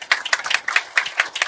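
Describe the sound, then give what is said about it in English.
A burst of audience applause welcoming Chairman Michael Zhang of the China Fashion Association at a panel discussion on international pathways: many hands clapping in quick, irregular, crisp slaps at a steady moderate level, with no voices over it. “Big round of applause.”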